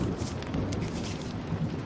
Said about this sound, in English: The storm is still going outside. You can probably hear the rain on the window.